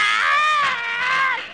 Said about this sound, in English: There were Japs all around us, yelling like crazy, and lots of guns going.